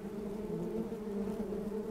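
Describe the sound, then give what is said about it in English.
A wasp buzzes steadily, a continuous droning hum that holds at an even loudness for the whole two seconds, with no voices. “If we can put aside our prejudice for a moment, wasps are fascinating creatures.”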